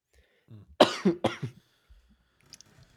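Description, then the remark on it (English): Two sharp, harsh coughs in quick succession from a man, followed by a few faint throat-clearing rasps and some quiet shuffling. “He needs one of your furfies to wash down all that spicy cough or whatever he's got going.”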